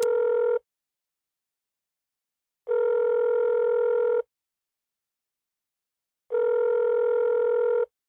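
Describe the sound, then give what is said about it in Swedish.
Three long ringback tones from an outgoing phone call made by the show Bollsnack, each buzzing steadily for over a second with silent gaps between, fairly loud and clear with no voices. “Ska vi ringa någon eller?”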